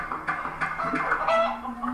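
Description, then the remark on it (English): A chicken clucks repeatedly in short, choppy bursts, steady, with a faint low hum running underneath. “Only one chicken. Is he gonna go kill a chicken?”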